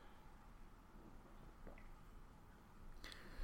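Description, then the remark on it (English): Someone takes a quiet sip of water, with soft wet squishing and a faint swallow against low background hiss, then a brief clink near the end. “I'm just going to have a drink of water here because this is getting ridiculous.”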